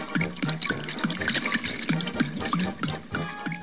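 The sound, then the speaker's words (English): Wet liquid sounds of Woodford Reserve Double Oaked whiskey being sipped as a shot after a toast, a steady run of small gurgling, bubbly pulses repeating for several seconds with no talking over them. “But we're going to do a shot of it right now. A sipping over a shotting.”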